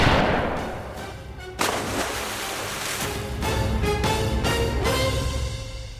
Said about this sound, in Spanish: Esquivé una ráfaga de su ametralladora, me acerqué más a él y logré endiñarle un balazo de escopeta en las tripas.